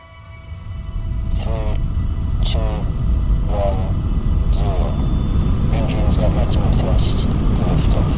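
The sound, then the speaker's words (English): A loud, steady roar of a 300-ton rocket's engines accelerating to full thrust at liftoff, deep rumbling that swells in the first second and then holds, with a voice faintly audible over the din. “There's an incredible amount of power, noise, and vibration as the engines accelerate to full thrust.”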